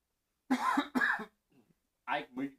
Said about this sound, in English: I mute my mic but leave yours on while I cough. Then I go to talk and I can hear myself in your mic.